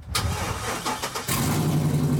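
A car engine cranks roughly and catches, settling into a loud, rattling, noisy hum with a low droning tone, the harsh sound of a vehicle running without a catalytic converter.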